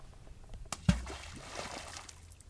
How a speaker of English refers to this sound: All right, here's a rock. I'm gonna throw it in the river.